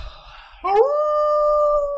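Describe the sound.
A person imitates a wolf howl, a single loud, sustained tone that rises sharply and then holds steady, after a brief moment of quiet.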